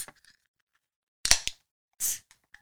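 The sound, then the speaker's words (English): A sharp metallic crack followed by a brief pop, then a short burst of fizzing hiss as a large beer can is opened. “Let's crack this open.”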